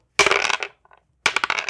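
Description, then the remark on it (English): Dice clatter loudly across a hard surface in two rapid bursts of rattling impacts, separated by a brief near-silent pause with a faint tick. No voices are heard. “So guys, let's grab our dice, and I want to ask which of these gods interests you the most.”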